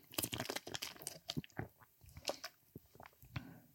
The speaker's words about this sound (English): Gonna take a drink of some podcast water.